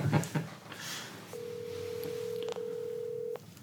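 A phone line rings over a speakerphone, a steady electronic tone sustained for about two seconds with a brief click in the middle, following some rustling and handling noise at the start.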